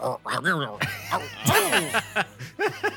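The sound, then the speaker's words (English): A voice imitates hyena noises with a quick run of high, warbling giggles and whoops that rise and fall in pitch, around eight loud bursts, a steady low hum underneath. “So the hyena comes in, sniffs the air, making hyena noises.”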